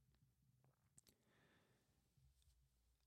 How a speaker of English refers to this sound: Oh, I keep clicking my pen on the thing. That's probably annoying as bleep.